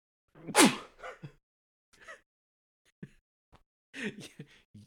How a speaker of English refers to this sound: I wasn't laughing. I was trying to hold in a sneeze right as you asked me that question. I just heard you fucking erupt with like what sounded like a laugh.